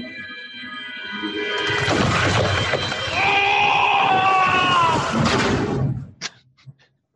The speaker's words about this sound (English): The scream reminded me of Tom Cruise in the Mummy movie when the plane is about to go down.